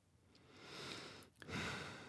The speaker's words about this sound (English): Did you just stifle a yawn? Just fucking yawn. I know I'm a bore. Okay? Just yawn.